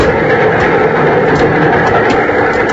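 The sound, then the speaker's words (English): A speeding train rumbles along the tracks in a loud, steady, dense roar that stays unbroken throughout, with faint rattling flickers on top and no voices, as someone hangs on the iron ladder on its side in the wind. “There was no answer, and suddenly I realized that I was hanging on the side of a speeding train.”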